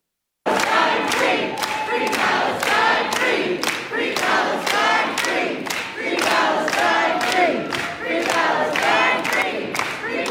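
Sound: crowd cheering and screaming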